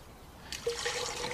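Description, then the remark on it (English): After a brief hush, water suddenly sloshes and splashes as it is drawn from a well, a soft watery churning with a few bright bubbling plops, no voices. “I'd still like a drink of water, if you can spare it.”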